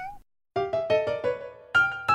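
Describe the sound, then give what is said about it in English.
A person imitates a cat, a wife pretending to be a cat, letting out a string of whiny, drawn-out meows in quick succession, fairly loud, after a short tone and a brief silence. “Judge John Hodgman, the court of last resort when your wife won't stop pretending to be a cat and knocking the clean laundry over.”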